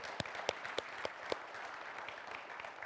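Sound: round of applause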